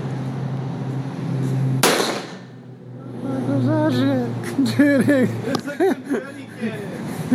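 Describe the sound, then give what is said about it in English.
A single loud, sharp real gunshot cracks out over a low steady hum, then fades as several voices start talking excitedly. “So it obviously sounds like a real gunshot, because it is.”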